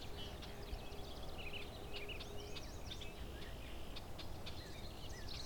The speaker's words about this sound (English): Some red-winged blackbirds here too.